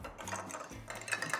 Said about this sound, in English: So we have glass in ice, or ice in glass. We have our cocktail. We're just gonna give it a little stir.